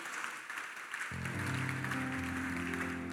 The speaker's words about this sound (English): Give God a clap.